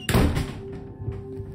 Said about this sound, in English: I told them thanks as they left. Thanks, boys. Flippantly letting the door slam behind them.